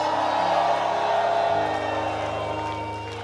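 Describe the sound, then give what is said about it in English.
A large crowd roars with sustained screams, whoops and cheers, loud and dense throughout, with a steady musical drone underneath that eases slightly toward the end. “Come on, if you believe that, come on, scream.”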